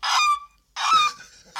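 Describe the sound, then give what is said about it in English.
Seagulls calling loudly at sea, heard from a boat travelling from Italy toward Southampton: three harsh, nasal cries in quick succession with brief gaps between them, and no voices. “Those are seagulls, you know.”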